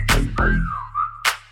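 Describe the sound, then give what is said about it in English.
A wolf whistle glides high and then dips, followed by a short second note, sounding over a thumping beat with sharp percussion hits. “Damn, that ass fat had to whistle like.”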